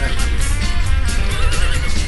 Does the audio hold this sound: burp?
no